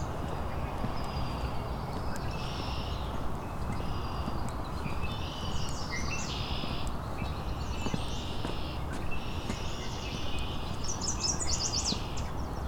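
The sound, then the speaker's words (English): Yellow warblers sing repeatedly in short, bright, high-pitched phrases, several overlapping songs rising over a steady, loud rushing background noise, with no talking. “A lot of yellow warblers in here today.”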